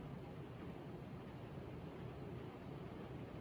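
heavy rain

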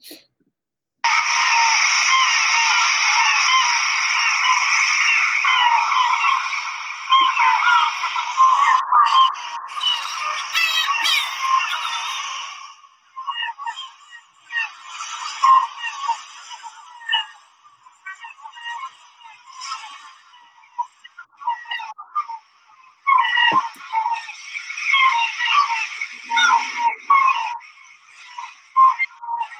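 birds calling

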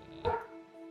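dogs barking

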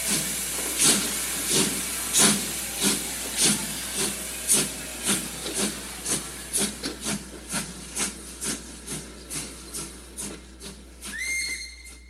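steam train hissing

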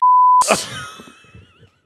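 censor bleep

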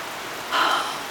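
rain falling

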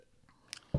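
sipping and swallowing beer

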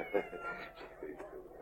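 cat meowing

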